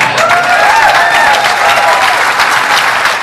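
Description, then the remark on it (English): Loud, sustained audience applause for a speaker's joke fills the whole stretch, a dense wash of clapping that stays steady and strong throughout, with a few faint cheering tones woven in. “Oh, he gets thunderous applause for this one.”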